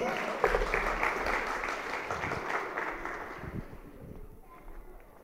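A crowd applauds with dense, steady clapping that holds strong for several seconds, then gradually thins and fades toward the end, with a few voices mixed in.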